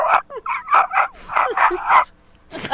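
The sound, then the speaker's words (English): A human voice imitates a faraway dog, giving a quick run of soft, muffled yips and barks, then a short pause before one last bark. “But I think I did hear "Far Away Dog."”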